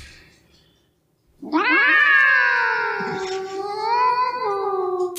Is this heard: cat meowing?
yes